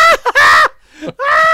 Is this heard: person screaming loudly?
yes